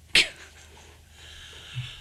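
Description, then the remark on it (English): One sudden, sharp cough bursts out near the start, then fades into a quiet, faintly hissing background with no talking. “Dude, I don't cough on me.”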